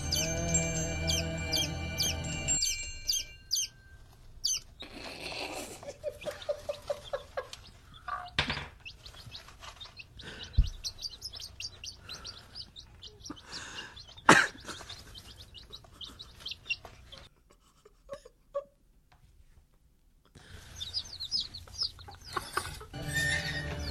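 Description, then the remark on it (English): A newborn chick, back in a cage under an incubator lamp to warm him up, chirps loudly and insistently, high shrill peeps coming in rapid bursts with brief pauses, with no talking. “And he is now back in the cage with the incubator lamp to heat him up. Chirping as loudly as ever.”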